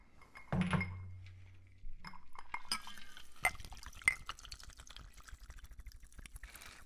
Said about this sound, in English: And now we're going to go ahead and pour into the rocks glass.